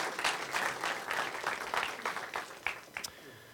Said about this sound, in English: So would you please give them one more round of applause?